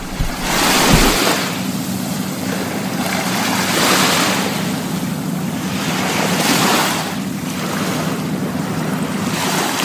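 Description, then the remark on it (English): Waves wash onto a shore at Perth in steady, rolling surges every few seconds, a continuous hiss of water with a low rumble underneath and some wind across the microphone. No one speaks. “let's have a listen to the sound of the water of Perth”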